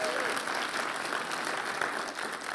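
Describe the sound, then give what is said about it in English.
An audience applauds steadily, a dense, even wash of clapping hands that holds at a constant level throughout with no voices rising above it; a round of applause for a woman who led worship that morning. “Yeah, give her a big round of applause.”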